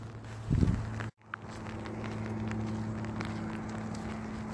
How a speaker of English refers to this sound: I am currently walking down Hennessy with an umbrella in my hand because it is raining. Raining very lightly. Perhaps if you listen, you can hear the pitter-patter of the rain on my umbrella.